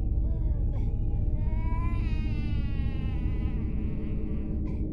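Thin, wavering infant cries rise and fall softly over a steady low rumble, with a couple of brief higher whimpers breaking through near the start and end.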